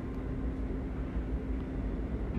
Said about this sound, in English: I'm sorry if you hear a lot of noise. It's the one train. I'm in New York.